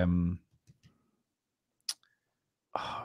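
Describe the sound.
A few scattered computer keyboard taps, faint soft clicks and then one sharper clack, in a quiet pause between bursts of someone talking.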